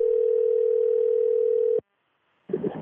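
A steady, unbroken telephone dial tone as a call is placed hums at a constant mid pitch for nearly two seconds, then cuts off abruptly into silence before a brief burst of voice begins.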